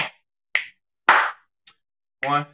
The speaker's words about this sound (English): So, really quick, you're going to hit your chest, snap your finger, clap your hand. So it looks like this. 1, 2, 3. One more time. 1, 2, 3. Go.